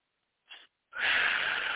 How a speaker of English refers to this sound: Okay, and just one final breath in through your nose and out through your mouth.